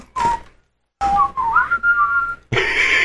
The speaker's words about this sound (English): All right. Enough of the whistle now.